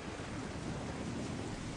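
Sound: raindrops falling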